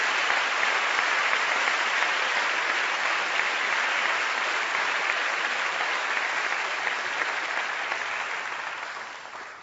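A crowd claps steadily in a dense, sustained burst of applause that holds strong for several seconds before gradually thinning and fading toward the end.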